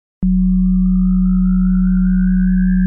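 After a brief silence, two steady low test tones of 40 and 185 hertz, a sideband effect test, start abruptly and hold at a constant loud level: a deep hum with a higher drone above it. A faint, slowly rising whistle runs alongside.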